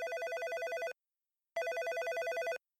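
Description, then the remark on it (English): A telephone rings twice, each burst a loud, rapidly trilling electronic ring lasting just under a second, separated by a short silence, as a woman due to give birth phones the hospital from home. Clear, with no voices. “When she's due and she's at home, she phones the hospital.”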